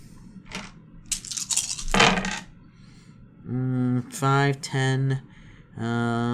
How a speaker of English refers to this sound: So I'm going to roll 8 dice.